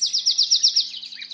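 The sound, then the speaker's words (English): A wren delivers a rapid, high-pitched trill of repeated bright notes, about seven quick pulses fading into softer twitters, heard clearly and alone with no talking. “From the nightingale to the wren”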